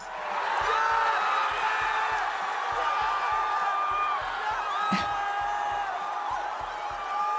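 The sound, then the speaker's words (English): A big college football stadium crowd cheers loudly and without a break as a cat that fell from the stands, caught by fans in an American flag, is revealed to be okay; high whoops and shouts over a steady low rhythmic thumping and one sharp bang partway through. “Cat rescue quickly overtook football as everyone in the stadium's favorite sport, with the crowd responding like this when the animal was revealed to be okay.”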